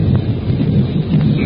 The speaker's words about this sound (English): Be a tornado. Don't you hear Usha, the wind? He's getting ready to tear up trees by the roots.